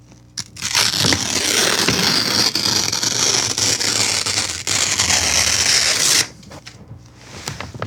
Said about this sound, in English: It's ripping paper in half. It's gonna start really smooth, really slow, and then it's gonna get probably pretty violent.